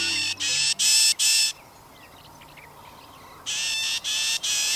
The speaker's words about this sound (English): Loggerhead Shrike